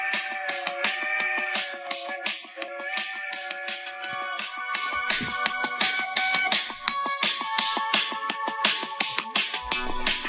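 A music mashup plays from a phone: a steady, driving beat under bright, sustained melodic tones and chords, fairly loud and continuous, with no talking over it.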